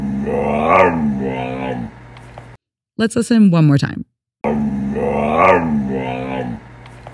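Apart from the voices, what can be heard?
cow mooing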